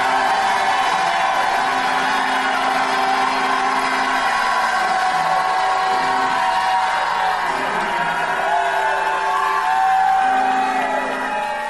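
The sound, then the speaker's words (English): A large crowd jumps to its feet, roaring and cheering together, with whoops and yells rising over a dense, continuous wall of noise that swells near the end. “Jump up to your feet and shout like you've never shouted in your life.”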